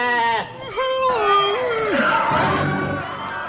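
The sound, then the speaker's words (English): A sheep wearing makeup, a bra and earrings bleats loudly, a long quavering cry that wobbles in pitch, followed by rougher, noisier bleating that trails off. “And Melvin has been set up with a sheep with makeup and a bra.”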